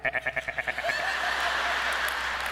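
A goat bleats once, fairly loud, starting with a rapid quavering stutter that smooths into a long, steady nasal bleat. No one speaks.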